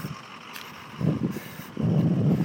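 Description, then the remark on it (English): A huge UPS delivery truck rumbles at a house, its low engine noise swelling in two heavy bursts and growing louder toward the end, with no one talking. “Oh, there's a huge UPS truck in my house.”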